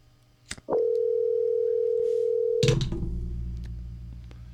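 A phone line rings out with one steady electronic tone lasting about two seconds, then a sharp clunk as an answering machine picks up, followed by a low hiss.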